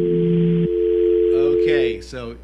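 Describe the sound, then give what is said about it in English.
A steady, unbroken telephone dial tone hums throughout, loud, on a phone line where a caller has dropped, while a voice starts talking over it in the latter half. “We have another dial tone.”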